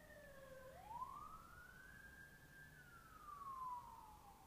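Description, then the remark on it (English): A wailing emergency vehicle siren sweeps up and down in pitch, holding a long rising-and-falling tone over a low rumble of traffic that includes a motorcycle, steady throughout. “We had a motorcycle and some sirens.”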